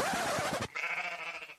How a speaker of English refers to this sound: And we've got sheep.